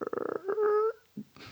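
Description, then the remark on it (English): A voice imitates a door creaking open: a rapid stuttering rasp that stretches into a drawn-out, wavering groan, followed by a short grunt and a breathy hiss. “The door creaked slowly open.”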